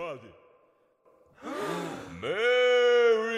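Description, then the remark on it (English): A voice acts out a shocked gasp: a breathy intake followed by a drawn-out, rising "ooh" of dismay, fairly loud, with no other sounds around it. It stands for the gasps of parents when a child pulls Santa's beard and yells that he is fake. “Just imagine the gasps from all the mom and dads.”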